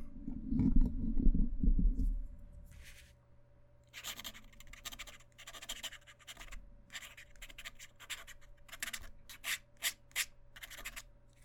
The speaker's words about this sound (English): It's a nice sound. I really like, I used my dip pen, yesterday. And the scratch it makes on paper is so nice.